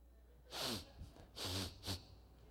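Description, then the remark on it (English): A voice imitates a man eagerly sniffing the air for food as he comes into a building: three loud, snorting inhales, two longer ones followed by a quick short one. “He went there that night, and when he comes in the building, he's sniffing for the food.”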